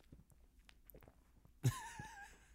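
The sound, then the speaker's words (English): Quiet wet mouth noises lead into one louder gulp, followed by a brief breathy rush as someone swallows while eating or drinking. No one speaks. “You hear the gulps just now?”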